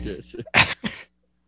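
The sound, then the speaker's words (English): A single loud sneeze: a brief breathy build-up, then a sharp explosive burst and a shorter trailing gust, followed by silence. “I really didn't want to spit on my M&Ms when I sneezed.”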